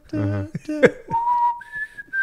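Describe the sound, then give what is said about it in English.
A person whistles a spooky TV theme tune slowly, holding long steady notes that step upward, after a brief burst of vocal sounds at the start. The whistle is clear. “Terrible whistling job.”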